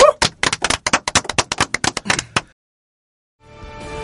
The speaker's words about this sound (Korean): 박수로 한번 응원하면서 이 시간 마무리해보죠.